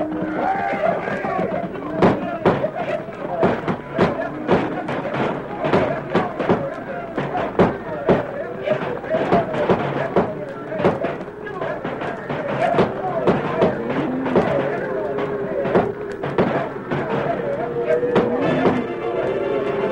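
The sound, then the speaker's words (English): Rapid, irregular gunshots crack again and again as men fire guns to start cattle stampeding in a valley, over the steady rumbling roar of the stampeding cattle, with voices shouting through the din for the whole stretch. “Fire off your shooting iron! Start them critters to stampeding!”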